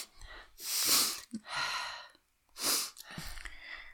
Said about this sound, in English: See, there goes a sniff.